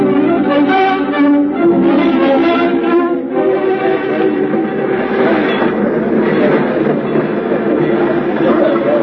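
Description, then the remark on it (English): A train rumbles steadily along the rails, loud, with a dense continuous roar and faint rhythmic clatter running throughout without a break. “Darling, your train leaves in 5 minutes, and you'd better stand at the gate if you want to get a seat.”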